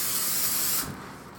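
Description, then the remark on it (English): A single steady hiss of aerosol cooking spray lasting under a second, bright and loud, then cutting off abruptly into quiet room tone. No voices. “I'm gonna spray this.”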